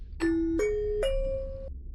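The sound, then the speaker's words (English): A two-tone chime bell sounds three quick notes in a rising pattern, each struck tone ringing briefly before the next, clear over a faint low hum, with no voices. “Saved by the bell.”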